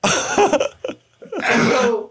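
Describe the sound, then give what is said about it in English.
A wet, mouthy burst that sounds more like a cough than a sneeze, with a short breathy buildup, a brief pause, then a long harsh exhale. “That's not a sneeze. That's a cough. No, it was a sneeze.”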